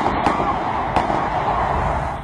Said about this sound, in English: The tourist who'd come to see the Mother of Parliaments ended up running away from it. Their panic explained by the sound of gunshots.